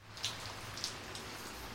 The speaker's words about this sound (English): It has been raining hard all afternoon, but beginning to ease a little now.